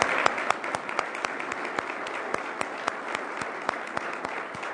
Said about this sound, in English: That, I think, deserves an applause.